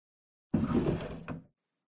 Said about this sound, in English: Open that drawer. The cigarettes are there.